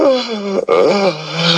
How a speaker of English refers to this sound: Yeah, the guy yawned at that one. You don't yawn.